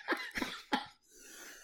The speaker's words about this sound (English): That cough.